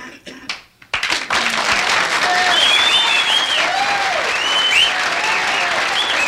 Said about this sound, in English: If you didn't intend to applaud, don't applaud. Keep your damn hands to yourself. What I'm saying is that if you did intend applauding, I'd like a big hand.